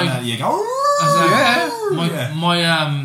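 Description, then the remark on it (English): A voice imitates the wind howling between two mountains with long, wavering, rising and falling moans, loud, sustained for a few seconds with only brief dips. “How was the wind in the between those two mountains today?”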